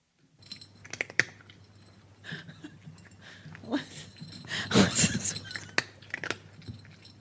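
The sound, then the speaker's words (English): A cat eats dry kibble from a bowl, making an irregular run of sharp, crisp crunches and small clinks as its name tag hits the bowl, growing busier midway, over a steady low hum. “It's a cat eating dry food.”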